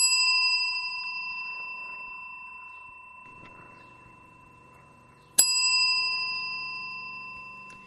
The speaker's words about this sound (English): We're going to stop right now, and I'll be back. We'll ring the bell to show the transition.